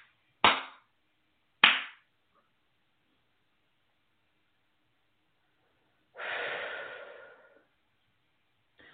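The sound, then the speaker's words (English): Two sharp, loud hand claps in front of the face and body as a clearing practice, about a second apart, followed after a pause by a long, breathy exhale. No one speaks. “All right, I'm going to do some clapping, clearing on that. This is front of the face, front of the body.”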